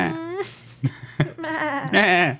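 A goat bleats in wavering, quavering cries, two longer bleats bracketing a short burst of clicks and rustles, fairly loud.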